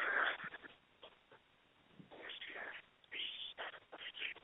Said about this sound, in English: Uh-oh. Is he whispering it to us? I don't know. I think you got a heavy breather.